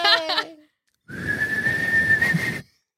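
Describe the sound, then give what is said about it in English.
After a brief vocal sound, someone whistles one steady, sustained note for about a second and a half, fairly loud, with a lot of rushing breath noise around it. “Whistle then. Let's you whistle.”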